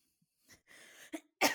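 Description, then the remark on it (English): A harsh cough in a few short bursts, with a breathy rasp between them, ending on one loud, forceful hack. No one speaks. “That was a cough, but thank you.”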